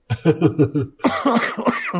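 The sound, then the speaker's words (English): A person coughs repeatedly, a quick burst of four or five harsh coughs followed by a rougher, throatier fit of several more, with no talking. “Well, just a fucking cough all of a sudden. I just got a cough now.”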